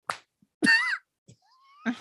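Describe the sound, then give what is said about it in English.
A single sharp hand clap rings out, followed by a short voiced sound, a faint rising tone, and another brief smack-like hit at the end. “I guess you clapped your hands. You didn't slap.”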